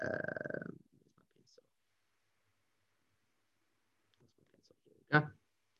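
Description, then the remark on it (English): A pencil is picked up and handled: a brief rustling scrape, scattered soft clicks and taps over a quiet stretch, then one sharp, loud knock against a desk. “let me just get my little pencil back.”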